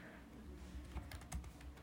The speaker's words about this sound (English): You really just typing with one hand there.